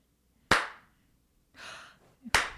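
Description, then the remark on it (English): Two sharp, loud hand claps spaced almost two seconds apart make a deliberate slow clap. A brief breathy hiss sounds between them, and no one speaks. “The slow clap.”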